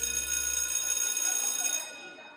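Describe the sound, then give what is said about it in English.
A school bell rings in one loud, steady, continuous metallic clang, then stops abruptly and its shimmering tone dies away over the last half second. “I get how you can sleep through my class, but how you can sleep through the bell, oh my.”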